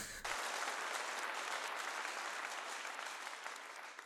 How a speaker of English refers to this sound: Insert applause sound here.